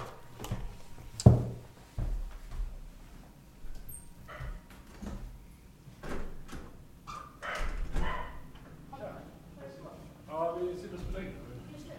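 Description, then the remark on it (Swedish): A dog barks a few times at irregular intervals, amid household noise and voices talking in the background. “Så ja, nu blir jag lite distraherad av en skällande hund här.”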